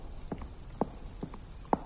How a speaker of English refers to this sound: I heard footsteps upstairs. Then, before long, they were heading down the stairs and back towards the kitchen.